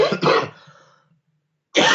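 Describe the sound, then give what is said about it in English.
A person coughs twice in quick succession, loud, then the sound trails off into silence before another harsh cough bursts out at the end. “Okay, let's hope that the adrenaline stops the coughing.”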